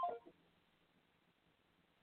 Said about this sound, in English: For some reason, this phone started ringing here.